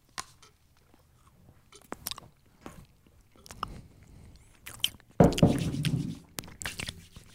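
Crunchy Carl Jr. cookies being chewed in a run of sharp, irregular bites and crackles, quiet at first, then a louder burst of crunching toward the end, with a faint voice now and then.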